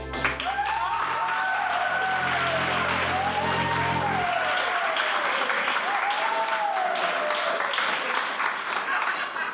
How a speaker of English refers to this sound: Please, I've had my fill of the applauding. Thank you. Thank you very much.